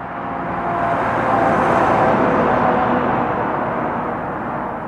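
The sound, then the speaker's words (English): Steady roar of highway traffic on Route 4 in Fairhaven, Vermont, on the border with New York, heard from a grassy field beside the road, with vehicles rushing past and a broad swell in the middle as a car draws close and fades away. “I'm standing in a grassy field next to Route 4 in Fairhaven.”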